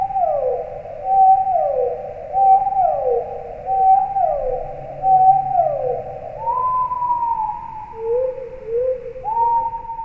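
Eerie underwater whistles from a marine mammal: a run of mid-pitched, downward-sliding calls repeating about once a second, then longer steady tones stepping between pitches, over a low background rumble.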